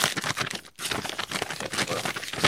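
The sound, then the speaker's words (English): Thick, strong gift wrapping paper crinkles and crackles as a present is unwrapped, a dense, continuous rustle that pauses briefly once before carrying on. No one talks. “This wrap has like a nice... It's thick. It's strong.”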